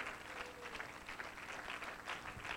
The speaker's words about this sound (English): Why don't you give him a hand clap of praise this morning?